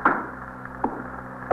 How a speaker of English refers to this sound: Would you shut the door?